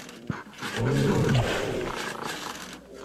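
Deep, rumbling roars come from big cats mating at a zoo: a drawn-out, low growling bellow that swells and fades over a few seconds, with faint background noise and no clear talking.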